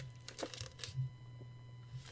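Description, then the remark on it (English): A drink container being gripped and sipped from, giving a few short, sharp crinkling crackles at uneven intervals over a steady low hum, with no one talking. “Oh, man, can you all hear that? You're gripping and sipping, big boy.”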